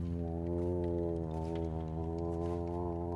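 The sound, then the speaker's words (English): A deep, sustained sperm whale call drones steadily throughout, a low, rich moaning tone with strong overtones that barely wavers in pitch or loudness. No voices are heard. “It swirls around in the open space beneath your feet, making whale song noises.”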